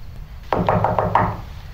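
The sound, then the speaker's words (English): A quick series of about five evenly spaced, prescribed knocks on the wooden door of a room in a house at night, fairly loud, following a moment of quiet, with no one speaking. “The knock is prescribed, because tonight this room is her domain.”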